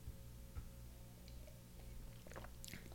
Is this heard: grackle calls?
no